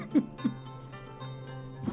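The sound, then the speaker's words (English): A couple of quick, muffled sneezes, two sharp bursts in rapid succession followed by a softer one near the end, with a low steady hum underneath. “Bless you.”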